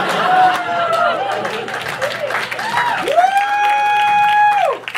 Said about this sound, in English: That's not the ending, but I do deserve a clap for that.